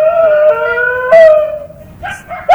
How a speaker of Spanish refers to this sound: Escucha primero el perro. El perro comienza a latir normal. Pero ya cuando La Llorona o el fantasma ese se va acercando, el perro ya como maulla.